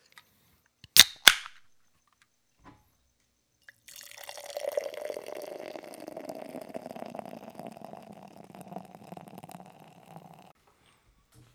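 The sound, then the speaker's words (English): Two quick sharp pops as a beer bottle cap comes off, a short pause, then a steady gurgling pour of beer into a glass for about six seconds, fairly clear, with no talking. “With the third beer poured out, I'm noticing something that's a little different, and I haven't seen this often.”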